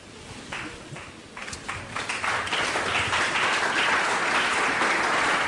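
An audience applauds, starting with a few scattered claps that quickly swell into dense, sustained clapping, loud and steady through the end with no voices over it.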